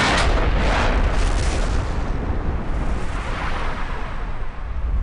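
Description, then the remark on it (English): A huge, roaring explosion of a damaged plane after a rough crash landing on ice, a sustained loud blast with crackling, rumbling debris that barely fades over several seconds. No voices are heard. “And their landing is chaotic and rough, and they're crashing along the ice, and the damaged plane is about to explode.”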